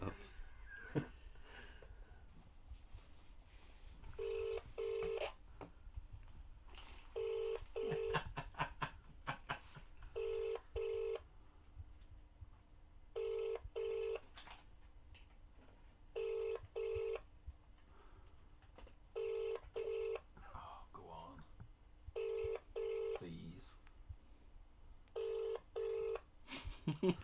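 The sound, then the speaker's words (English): A telephone call to Capsy rings out over a loudspeaker during a broadcast in repeated double bursts, about six pairs at a steady rhythm, each a buzzy mid-pitched tone over low background noise, with no one picking up. “This would have been brilliant if he answered, but as he doesn't, it's useless.”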